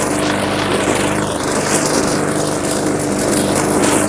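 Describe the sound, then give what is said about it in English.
A lawn mower mowing thick grass at the back of a yard, with a little dew on the grass, its engine droning steadily and loudly throughout, a constant low buzzing hum with a broad rushing noise over it and no pauses or voices. “Let's Mow The Lawn!”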